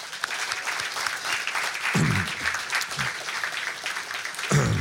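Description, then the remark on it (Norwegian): An audience claps steadily throughout, a dense, crackling wash of applause at an even level, with a couple of brief low-pitched cheers or shouts rising out of it. The applause welcomes the day's guest, author and cultural historian Tor Gotaas. “Jeg vil at jeg skal gi en stor applaus til dagens gjest, forfatter og kulturhistoriker Tor Gotaas.”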